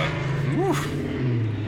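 Muffled traffic coming out of Coins and Comics, a steady low rumble with a brief rising and falling engine tone as a vehicle goes by.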